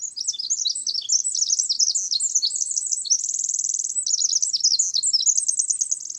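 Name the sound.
pacific Wren song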